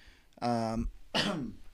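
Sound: cough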